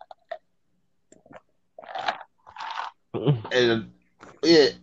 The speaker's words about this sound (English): And I'm going to sip my little Hennessy little cup right now because that's none of my business.